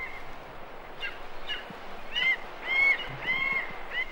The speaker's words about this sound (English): A young Verreaux's eagle, which has just left the nest, is circling around over a kopje. It's making the cheep cheep noise that you hear. The much louder screech is an auger buzzard which is passing over.